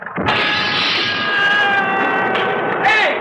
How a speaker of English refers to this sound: Don't anybody tell me I didn't hear a scream that time.